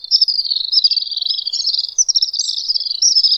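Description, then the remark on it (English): Shrill, high-pitched screaming trills from little swifts, a continuous rapid twittering chorus of overlapping calls that pulses steadily throughout, fairly loud with no other sounds. “As far as my observation goes, their shrill, joyous screams are uttered as they circle their nests and also when large flocks playfully gather in the sky.”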